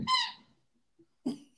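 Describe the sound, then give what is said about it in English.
A dog's squeaky toy squeaks twice: a longer, bright, shrill squeal, then a pause and a second shorter squeak. No one speaks. “I think the dog has a squeaky toy.”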